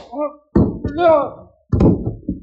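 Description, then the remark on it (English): Two heavy, dull thuds land about a second apart as a man is punched and knocked down to the floor, with a man's strained groan and vocal noises around them. “knocked you down.”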